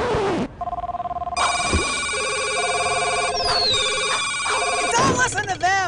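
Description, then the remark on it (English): A cell phone ringtone plays a bright electronic melody of sustained, stepped tones, loud, with a short burst of voices breaking in near the end. “Their songs are just ripped off ringtones.”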